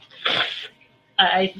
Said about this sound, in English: So did I freeze? Is everything okay? Did I sneeze so hard that I froze?